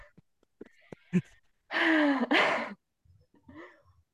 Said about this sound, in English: Good yawn. Let it come. Good. Let that out. Oh, yawning is the best. Just let that move.